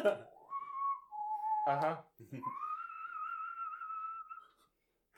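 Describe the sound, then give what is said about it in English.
A person whistles a few sustained, wavering tones in a birdlike pattern, imitating bird speech to say yes, with a short burst of vocal sound in between, clear against otherwise quiet surroundings. “And I'm just gonna whistle a, yes, I can, in, like, common bird speak.”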